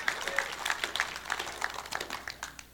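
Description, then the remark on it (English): An audience claps steadily, a dense patter of many hands with sharper individual claps standing out at a fairly even pace. The applause is moderately loud and continues throughout, with no voices over it. “So, you guys either got to clap or not.”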